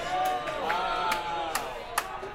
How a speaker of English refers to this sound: Sorry, people are cheering on the teams on the World Series because it's event. Sports ball tonight.